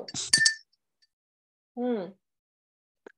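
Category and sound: household object, glasses clinking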